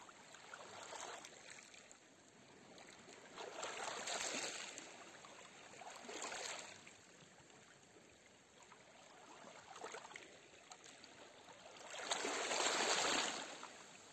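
Soft ocean waves wash in and recede in a slow, irregular rhythm, each swell rising into a broad hiss and fading back to a quiet, steady background. No one speaks.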